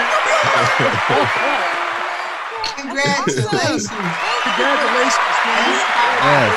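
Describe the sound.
An applause sound effect: a steady burst of crowd applause, loud and continuous for several seconds, with cheering and whooping voices mixed into the clapping, then trailing off near the end.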